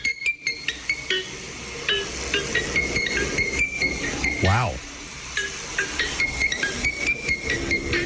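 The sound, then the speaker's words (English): A parrot named Gucci imitates an iPhone ringtone: a string of bright, bell-like whistled notes in a repeating melodic pattern, with a rising swoop midway and a voice briefly reacting. “It's a parrot that mimics the sound of the iPhone ringtone.”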